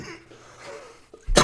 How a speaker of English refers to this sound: Oh, fuck. Sorry. Someone was like, don't cough in the mic.